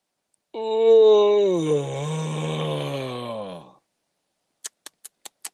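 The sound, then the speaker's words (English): A pet dog named Scraps gives a long, whiny yawn lasting about three seconds, its pitch sliding downward, fairly loud, followed by a quick run of five short clicks. “Yawn.”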